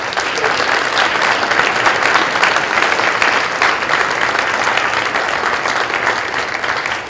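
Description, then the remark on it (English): Sustained applause from a dinner audience at the Connolly Center for the center's staff, a dense, steady wash of many hands clapping at an even loudness for about seven seconds, with no voices standing out. “First, I'd like to really give a warm round of applause to the fabulous staff here at the Connolly Center”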